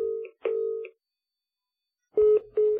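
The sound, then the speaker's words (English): Electronic ringing tones of an incoming phone call: two short paired bursts of a steady beeping tone, a pause, then two more louder bursts, with no talking. “We got a phone call.”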